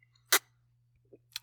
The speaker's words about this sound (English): I didn't mean for it to be such a loud sip, but it was, so it worked out.